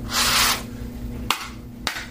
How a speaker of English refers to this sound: That's pre-shuffle energy. I'm shuffling the cards right now, and then we'll go into what needs to be heard.